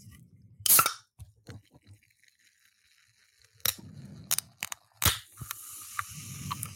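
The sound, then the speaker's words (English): A cold can of cranberry ginger ale flavored sparkling water is fiddled with and cracked open with one swift movement of a finger: a few sharp metallic clicks and scrapes, then a crisp pop followed by a soft, steady fizzing hiss. No one speaks. “And I'm just going to open a can like a normal person.”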